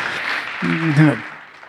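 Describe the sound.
A church audience gives polite applause on a Sunday for the preachers after the sermon. A soft, steady patter of many hands clapping carries on, with a short voiced call rising briefly over it midway before the clapping continues at the same modest level.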